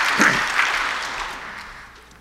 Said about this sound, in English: And let's just give him a warm round of applause as he brings God's word to us.